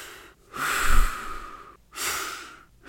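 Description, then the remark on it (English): Slow, steady breathing done silently through the nose to set a pace of inhaling and exhaling: a long airy breath followed by another after a brief pause, with no talking. “Only silently, like through my nose. Just giving you the pace.”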